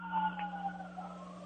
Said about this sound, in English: The sirens are not me, by the way. As I hit the play button, the sirens came on.